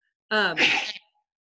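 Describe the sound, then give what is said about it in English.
A single loud sneeze: a quick rising intake with a tonal 'ah' that bursts into a sharp, noisy 'choo', then silence. “bless you. Excuse me.”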